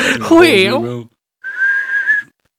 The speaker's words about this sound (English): Every time you're whistling.